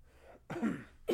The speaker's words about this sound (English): What are you doing? See, now you're coughing again, dude.